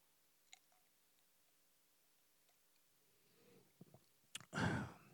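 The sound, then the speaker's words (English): A few soft clicks and small handling noises in near silence, then a brief slurp and wet swallowing sound of someone taking a sip of a drink. “So I'm going to read the quote real quick, but let me take a sip.”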